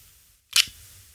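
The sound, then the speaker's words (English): A single quick, crisp leaf shutter click of a film camera, fired at a fairly fast shutter speed while aimed at a bright computer screen. The click is soft and stands alone against quiet room tone. “So then when you press the shutter, after you see one of those two symbols, either the OK symbol or the lightning symbol, and here is the beautiful little shutter click.”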